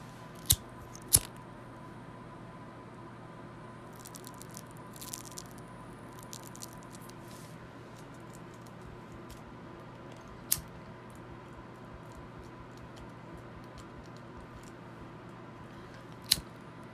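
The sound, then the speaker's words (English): A lighter clicks and sparks a few times to light a joint of weed rolled in Elements paper, sharp isolated snaps spaced far apart, with a soft crackle of burning in between over a low, steady background hum. No one speaks. “So, yeah, I got this outdoor light depth weed rolled up in this Elements paper. So, let's spark it.”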